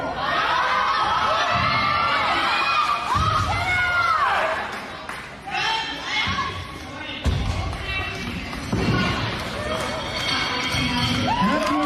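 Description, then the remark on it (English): A large crowd at a powerlifting championship in Canada cheers and applauds loudly for about twelve seconds during a national record lift, with high excited shouts rising and falling over the roar and brief lulls before the noise swells again. “Yeah, who was applauding?”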